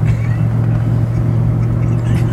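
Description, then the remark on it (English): A car's engine drones steadily, a loud, low continuous hum and road rumble as the vehicle picks up speed going downhill, with no voices. “Yeah, we pick up speed going down.”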